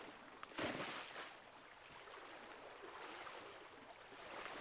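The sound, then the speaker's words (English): Steady rushing sea surf fills the scene, with a few louder splashes near the start as horses move heavily out through the waves. No voices are present. “Some braver horses venture out further into the water.”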